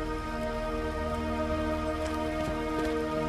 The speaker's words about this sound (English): Also raining and it's not running, but I suppose you can argue it's dried on real good.